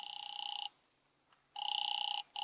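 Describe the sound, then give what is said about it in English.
A telephone rings over the line as a call is placed to Harlan Matthews' home number, a steady electronic trill in bursts: one ring, a pause, then another ring and the start of a third. No one speaks. “A phone book in the corner drugstore showed two numbers for Matthews, his home and his business. I tried his home.”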